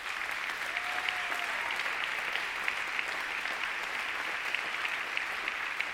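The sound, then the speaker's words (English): Sustained audience applause, a steady dense wash of many hands clapping at an even level for the full length, with no speech and a brief faint whistle-like tone early on. “So let's give them a round of applause again.”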